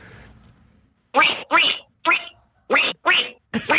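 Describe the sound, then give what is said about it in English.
A contestant from Coromandel does a loud duck impression in an Animal Idol radio contest: six nasal, buzzy quacks in a quick, even rhythm, following a brief moment of faint background noise. “That's a duck and really, really annoying.”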